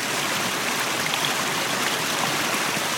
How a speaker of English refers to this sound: What music could compare to the sound of a bubbling creek?